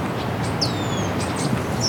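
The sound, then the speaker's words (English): A thin, descending red-tailed hawk scream cuts through once, with scattered short, high red-winged blackbird calls around it as the blackbirds attack the hawk overhead, all fairly faint over a steady low outdoor rumble. “Red-tailed hawk's right above me now. It's being attacked by red-winged blackbirds.”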